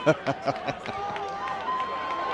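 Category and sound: crowd, football fans cheering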